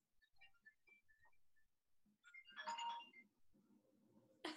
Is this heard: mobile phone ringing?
yes